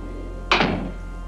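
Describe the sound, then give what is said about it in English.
A single solid thunk of a door swinging shut, moderately loud, with a short woody decay fading into a quiet room-tone background. “This one is one about doors opening and closing and celebrating a very important holiday.”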